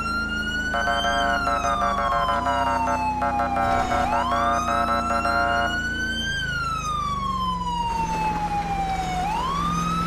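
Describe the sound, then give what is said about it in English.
A police car siren wails loudly, its pitch sweeping slowly up and down in long cycles over a steady low engine rumble, used as a single siren for a low-priority code 2 response, with no one speaking. “Single siren use for low priority.”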